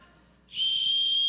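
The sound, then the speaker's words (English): A person whistles one steady, high, sustained note that starts abruptly after a brief quiet moment and holds loud until the end, with no talking over it. “God's just walking around with his whistle.”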